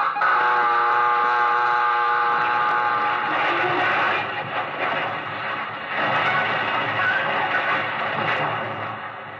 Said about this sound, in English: First, you've heard the collision alarm.